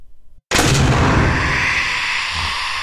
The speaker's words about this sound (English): What the fuck was that? I don't know. It sounded like the basement door shut. Jesus fucking Christ. Whatever it was, it blew the flame of the candle out.